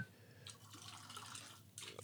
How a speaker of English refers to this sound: All right, this is low enough. All right. Go, pour it slow. Slow pour.